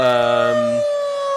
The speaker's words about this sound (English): So I guess that means that we got some sirens ahead of us. Sirens! Bring on the sirens!